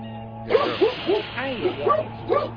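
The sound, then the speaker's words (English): A pet dog barks several times in a quick, uneven series, moderately loud over a steady low hum. “My dog, and I don't know what they're barking at.”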